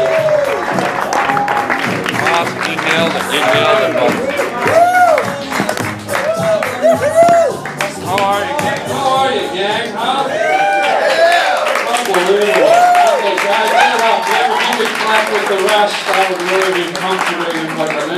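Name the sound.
audience clapping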